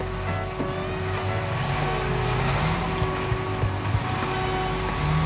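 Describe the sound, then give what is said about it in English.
A steady wash of New York City street traffic, with engines rumbling and droning continuously at moderate volume and a low hum underneath, with no clear voices. “Wow. New York, just like I pictured it. Skyscrapers and everything.”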